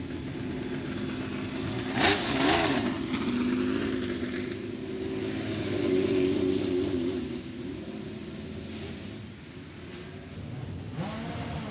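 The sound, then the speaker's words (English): A modern-day Le Mans car, a Ferrari 488 Challenge car driven by Marino Franchitti, revs and drones steadily, its pitch rising and falling as it accelerates, with a sharp burst of noise early on and its turbos whistling high above the engine roar. “This is the sound of a modern-day Le Mans car, 488 Challenge car.”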